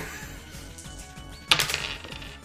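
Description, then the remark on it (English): Metallic clinking and gear-mashing noise as Prindle slides into an opening and the opposing machine gets jostled around: a steady mechanical churn with rhythmic low thumps, a hacksaw-like sound, then a sudden loud, bright metallic clatter partway through that rattles and fades. “Clink, clink, clink, clink. And then you just hear something a bit like a hacksaw. Ooh. Gear mashing noise.”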